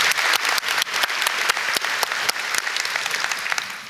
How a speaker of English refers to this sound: A big thank you to the board of the festival and all its various supporters, in particular Heartland Bank, have made it possible for Sir Anthony to be with us tonight. So a big round of applause for them as well.